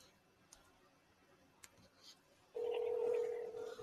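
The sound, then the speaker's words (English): Two faint clicks like phone keys being pressed, then a loud, steady electronic phone tone that starts abruptly and holds to the end, with no one talking. “But anyway, we're going to, I want to just, that's why I get on my phone one more time.”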